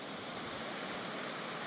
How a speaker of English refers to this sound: You look up and all you see is more sand in front of you, but you can hear the ocean. Walk towards the sound of the ocean.